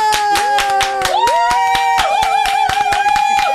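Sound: audience applause and cheering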